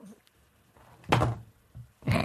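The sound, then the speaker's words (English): A heavy thud like a door slamming shut as a phone is dropped while hanging up, followed by a second similar bang about a second later, both loud with low rumbling between them; no talking. “the phone just literally dropped. I was hanging up on them. It sounded like a door slamming.”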